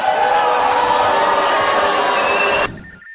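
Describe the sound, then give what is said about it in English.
A large crowd at the 2011 CPAC Straw Poll announcement roars and cheers as Texas Congressman Ron Paul is named winner, a dense, sustained wall of voices, loud and steady for nearly three seconds before abruptly cutting off into quiet. “Now in the 2011 recording, you can hear a truly excited crowd.”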